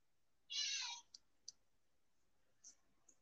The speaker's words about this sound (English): Yes, cat.